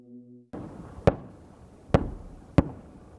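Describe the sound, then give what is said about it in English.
Three sharp explosive blasts ring out about a second apart over a rumbling, noisy background, each a sudden loud crack that quickly fades: several bombs dropped on a Russian main battle tank, detonating. “His unit also managing to take out a Russian main battle tank by dropping several bombs on it.”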